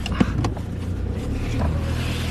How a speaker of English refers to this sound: It's a farm car. It's always dirty.